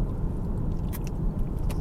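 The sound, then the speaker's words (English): Steady low rumble of a car driving on a 100 km/h road behind a slower distribution lorry, heard from inside the cabin, with constant engine and tyre drone and a few faint light rattles and clicks. “Come drive with me!”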